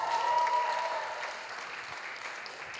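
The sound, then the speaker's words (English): An audience claps in a dense, steady round of applause for people coming forward, holding at a fairly even level, with a faint whistle-like tone riding over it in the first second. “Yeah, we'll have a round of applause for these people that are coming forward.”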